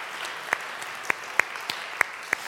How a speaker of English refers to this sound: Would you, church, please applaud these men and women as they're standing in the gap?